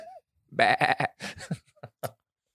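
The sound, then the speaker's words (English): A person imitates a sheep, letting out a long, quavering bleat followed by a few shorter, choppy bleats that trail off. The voice is fairly loud, with no other talking. “Fucking sheep.”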